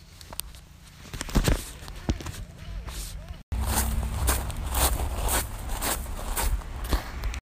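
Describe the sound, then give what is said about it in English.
Steady footsteps along the Wapak Trail during a foggy dog walk, a regular series of soft crunching steps at walking pace, over a low rumbling background that grows louder partway through. “Well, I have enjoyed this foggy dog walk.”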